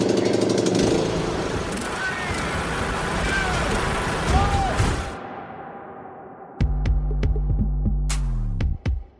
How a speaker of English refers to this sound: You haven't ever seen a lawnmower being driven down the road before?